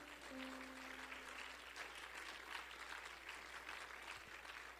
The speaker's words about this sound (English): Would you clap your hands to him again?